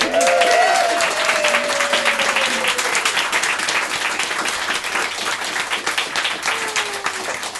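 A crowd gives a sustained round of applause, dense and loud throughout, with a few whoops and cheers rising over the clapping near the start before it slowly tapers off.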